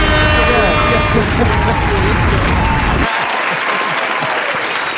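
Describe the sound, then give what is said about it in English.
Loud, dense audience applause with steady clapping throughout, the low rumble dropping away about three seconds in while the crisp hand claps carry on, with crowd voices mixed in. “Give him one more round of applause.”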